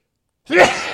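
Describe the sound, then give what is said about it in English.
After a moment of silence, a single sudden sneeze bursts out, a sharp voiced onset trailing into a breathy, hissing exhale. “Gesundheit.”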